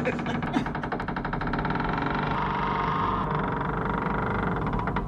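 A heavy door groans open on its hinges in one long, loud, grinding creak that rattles and shudders steadily for several seconds, with no talking over it.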